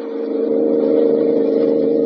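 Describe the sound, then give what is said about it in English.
A steady, droning car engine runs loudly as the car is driven along a road, its mid-range hum holding constant with a slight pulsing rumble, no voices present. “Who's running this car?”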